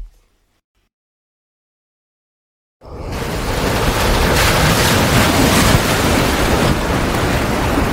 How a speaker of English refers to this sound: A ship tossed in the ocean with 100 head of cattle moving back and forth violently. The moos could be heard, the creaks of wood, whoosh of the wind. Some old salty sea hands that have seen it all are even frightened at this one,